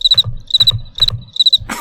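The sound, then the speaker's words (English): A cricket chirps in quick repeated bursts, each a cluster of high, shrill pulses, about four bursts in under two seconds, clear with no talking. “Well, it's a cricket.”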